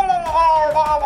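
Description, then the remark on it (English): A voice imitates the strangled, gurgling scream of archpriests: one loud, sustained, high-pitched wail lasting about a second, wavering slightly in pitch with a raspy, strained edge and no words. “They're going to gurgle and scream.”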